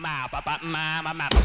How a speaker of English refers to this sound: Stop banging the table.